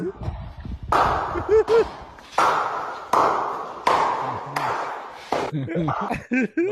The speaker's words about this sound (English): It looks like two people playing ping pong, but there's no ping pong. It just pans over. There's a guy with his belly out, cupping his belly button, smacking it, making the noise of the ping pong.